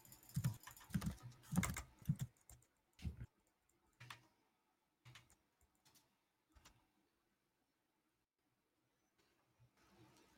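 Rapid keyboard typing, a burst of dense clicking at first that thins into scattered keystrokes and pauses, fairly close and quiet, with no one speaking.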